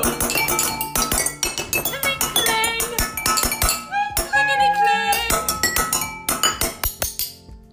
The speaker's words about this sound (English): Do you like to go kling klang with your cutlery? We do too!